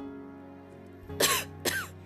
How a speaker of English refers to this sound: He coughed twice more and then put his handkerchief away.